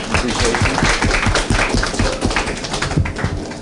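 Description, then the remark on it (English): An audience at a library event applauds the visiting gentlemen, a steady wash of many hands clapping that stays fairly loud and even for the whole few seconds with no clear voices over it. “If we want to give them a round of applause.”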